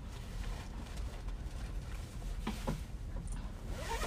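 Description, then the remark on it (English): A zipper on a compartment inside a backpack is pulled shut in short rasping bursts amid soft rustling and handling of a bag, with no one speaking. “So I'm going to put this away in the zipper compartment that I have here inside the backpack.”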